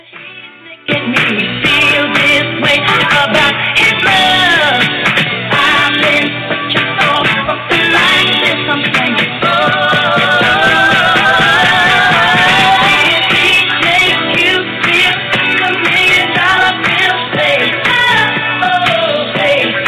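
After a second of silence, a pop song plays loudly and steadily, with a full band and a melodic singing voice carried over a dense, continuous backing.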